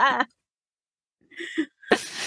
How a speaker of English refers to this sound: Sorry. Coughed at the same time.